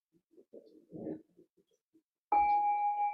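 A small bell is struck once, ringing out clearly with a sustained tone that lingers to the end, following a few soft, faint rustles and murmurs.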